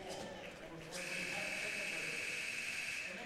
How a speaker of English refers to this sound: That was the final buzzer. And this one will come to an end in two periods. Northern wins it 9-0.